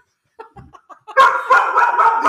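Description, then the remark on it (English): A voice mimics a chicken with four or five short, quiet clucks, then breaks into a loud, drawn-out imitation of a cat's meow that wavers for about a second. “First the chicken. I'm the chicken lady. And then meow.”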